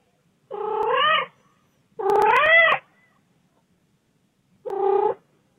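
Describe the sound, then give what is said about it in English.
A cat meows three times in a voicemail recording, each a drawn-out, wavering call with a rising and falling pitch, separated by short pauses. Loud and clear with no talking, and the calls ring with an outdoor echo. “I think that's a voicemail for Reacher.”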